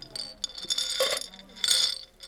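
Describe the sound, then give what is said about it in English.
Glass clinks and rattles, several bright ringing taps spread unevenly over a couple of seconds, with a louder cluster of jingling near the end over a faint shop murmur, in a craft shop in the center of Paris whose walls are lined with glass bottles filled with beads, buttons, plastic flowers and tassels. “Glass bottles filled with multicolored beads, buttons, plastic flowers, and tassels line the walls of this craft shop in the center of Paris.”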